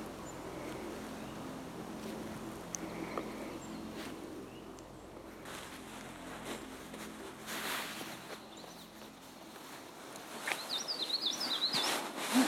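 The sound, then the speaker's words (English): An indigo bunting sings a short run of high, bright chirping notes near the end, fairly clear over steady outdoor background noise and a low rumble. “That's an indigo bunting.”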